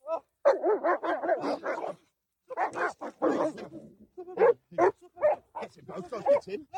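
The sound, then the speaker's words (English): Large Cane Corso dogs barking aggressively as they attack a man in a park, a rapid flurry of loud, harsh barks and snarls, with short pauses between bursts and a voice mixed in among them. “That might be a Connie Corso dog. Those are Connie Corsos.”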